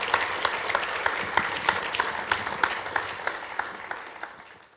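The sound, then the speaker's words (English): An audience at C3 Hobart applauds a speaker at the end of a message, a steady, dense wash of many hands clapping with a few sharper claps standing out, gradually fading toward the end. “Why don't we give Professor Tim a huge round of applause?”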